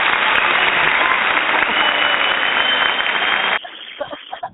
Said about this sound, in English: I love the applause and everything. It makes me feel really special.